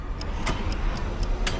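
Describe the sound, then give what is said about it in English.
A clock in a Mortal Kombat video teaser, counting upwards, ticks quickly and evenly, six crisp clicks in under two seconds, sitting over a steady low rumble that fills the background. “It's a clock. Counting upwards.”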